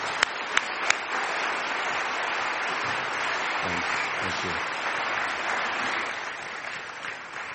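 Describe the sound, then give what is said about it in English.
Sustained audience applause, a dense steady wash of many hands clapping at an even level for several seconds, opened by a few sharp individual claps and with faint voices murmuring underneath. “But the other way is we applaud in a very British way.”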